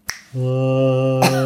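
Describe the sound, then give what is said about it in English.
A sharp snap, then a human voice imitating whale song with one steady, low, droning hum held for nearly a second, ending in a brief noisy burst. “There it was. Whale song, specifically.”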